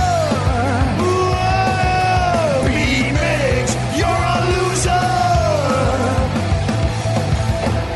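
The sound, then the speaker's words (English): A group of voices loudly and continuously shouts a name, several pitches overlapping and sliding up and down in a raucous chorus of yelling that fills the whole stretch without pause. “Do everybody scream his name?”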